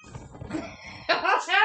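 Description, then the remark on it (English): A cat meows twice in quick succession, fairly loud, the second cry rising and falling in pitch, after a moment of low muffled background noise. “Meow. He wants your donut.”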